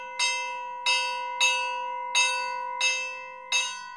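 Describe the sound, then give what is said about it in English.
A bell plate, a really big, thick plate of steel on an amplifying box, is struck six times in an uneven, fairly steady rhythm, each clang ringing on like a train bell. The strikes are clear, with no voices. “And the box amplifies, and then it has a bell plate, which is just like a really big, thick plate of steel.”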